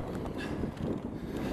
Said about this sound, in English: But it was very windy, as you can hear in this next clip.